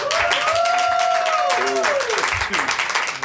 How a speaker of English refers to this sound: Give me a round of applause for ….